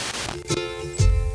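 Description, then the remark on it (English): A short burst of hissing FM radio static as a dial tunes between stations, starting at 88.1 at the far left of the dial, with faint steady whines running through the noise and a louder, bassier crackle near the end. “There's the static.”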